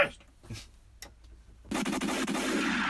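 A gunshot sound effect bursts in after a quiet stretch, loud, with several sharp cracks over a sustained noisy rumble that carries on to the end.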